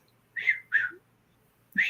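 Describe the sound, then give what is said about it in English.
A person whistles an imitation of a little up-down whistle call: three short up-down whistled notes, two close together and a third after a pause, clear with no talking. “And it was doing that, I'd hear just a little up down whistle.”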